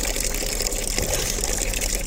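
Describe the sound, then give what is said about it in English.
A dog, Basto, slurps water from a fountain, well clear of the nozzle, in a recreation area: a steady, full hiss of running, splashing water fills the whole two seconds at an even, moderate loudness, with no voices. “And this is what it sounds like when a dog enjoys a slurp from a fountain, well clear of the nozzle, I have to say.”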